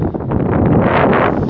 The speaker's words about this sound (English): It's been going out because it's been really windy.